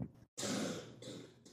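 A rough cough erupts after a brief silence, followed by a raspy throat-clearing burst, harsh and noisy, heard alone without talking.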